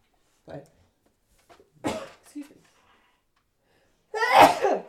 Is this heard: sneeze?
yes